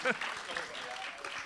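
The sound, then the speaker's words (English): A crowd claps steadily for contestants who came up on stage, in a dense, even wash of applause, with a few brief shouts or voices rising over it near the start. “Round of applause to our brave contestants.”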